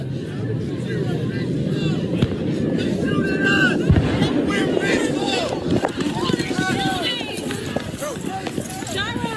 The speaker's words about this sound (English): They're shooting at us in the street in Fredericksburg.